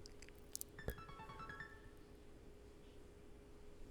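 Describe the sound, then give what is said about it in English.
A phone's text message alert chimes quietly: a brief run of bright, rising electronic tones lasting about a second, preceded by a couple of soft clicks, with no one speaking. “Let me turn my fucking phone off, man. I'm in the darkness. You're not supposed to get text messages.”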